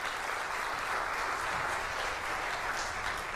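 A crowd applauds steadily, with dense, even clapping that holds at a constant level for a few seconds and doesn't fade or pause. No one speaks over it.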